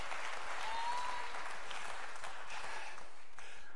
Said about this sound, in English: Come on, clap your hands to the Lord and praise Him with the shout of victory.